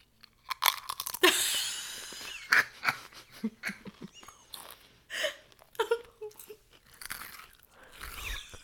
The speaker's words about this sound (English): I'm about to take a big crunch.